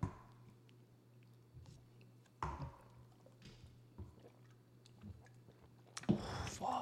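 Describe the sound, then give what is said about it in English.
Water pours from a Tito's Handmade Vodka bottle into shot glasses in a few short bursts, with soft splashing and glassy clinks over a low steady hum, ending in a louder clatter. “By the way, for the viewers at home, it's water, actually. Oh. It's just in this bottle.”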